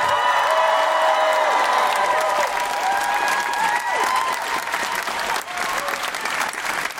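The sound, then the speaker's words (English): A theatre audience at the Edinburgh Playhouse applauds Nish Kumar loudly and steadily, a dense wash of clapping with a few high whistles and whoops rising over it, holding strong for several seconds. “Keep that applause going, Edinburgh Playhouse, for the astounding Nish Kumar!”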